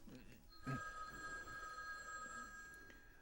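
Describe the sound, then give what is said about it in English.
A telephone bell rings steadily in a continuous sustained tone throughout, fairly quiet, with a dull thump near the start and faint voices underneath. “Now that is a fine looking phone, I'm telling you.”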